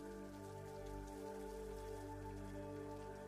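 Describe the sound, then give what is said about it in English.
Steady rain patters continuously beneath a sustained, humming musical drone, the soft hiss of falling drops spread evenly throughout with no voices. “This rain also has the ability to heal other areas of your life that you feel still need healing.”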